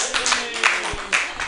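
A short burst of audience clapping, a dense spatter of many hands at moderate volume that swells in a few waves and continues steadily for under two seconds.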